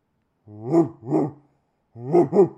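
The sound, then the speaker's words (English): A person in a studio apartment imitates a barking dog with four voiced, throaty woofs, two quick pairs separated by a short pause, fairly loud, with no other talking. “I've got neighbors, so they might actually. Think it's a dog.”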